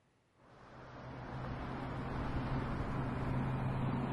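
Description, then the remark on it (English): A rusted blue Honda's engine rumbles up from near silence into a steady, low droning hum with broad road noise as the car pulls out of a parking lot in sweltering heat and eases into slow-moving traffic on I-33. No one speaks. “Then he pulled out of the parking lot and eased into the slow-moving traffic flowing through I-33.”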